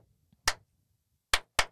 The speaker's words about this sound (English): Alright, ready for a clap? So we can line this shit up. Who's got the clap? Oh, that was horrible.